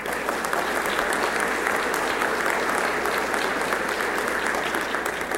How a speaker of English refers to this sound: The first one being, be kind to the judges. So I think we should give our judges a nice round of applause.